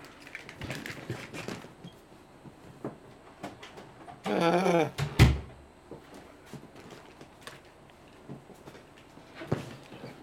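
An office door creaks as it swings, its hinge squealing briefly, then shuts with a single solid thud. Soft footsteps and small knocks are scattered around it, with no talking.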